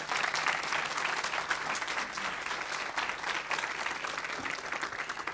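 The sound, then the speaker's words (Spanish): An audience bursts into steady, sustained applause, many hands clapping in a dense continuous patter that holds at an even, fairly loud level throughout, with no voices standing out. “¿Cuánto le pueden dar un aplauso a Dios por eso?”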